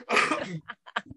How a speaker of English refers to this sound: I gotta cough off of that one.